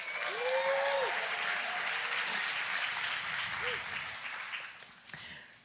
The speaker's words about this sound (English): Okay, thank you, ladies. You guys can clap for them.